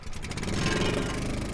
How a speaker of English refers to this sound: Then the vacuum gets going.